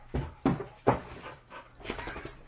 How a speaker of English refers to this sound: There's not been fighting, has there? Because I'm hearing some barking. No fighting?